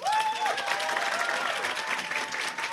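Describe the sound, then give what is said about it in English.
A modest, steady patter of audience applause given as a vote by round of applause, lukewarm rather than rousing, with a brief high whistle-like tone at the very start and no voices over it. “I think we should do the round of applause system because it works well last time.”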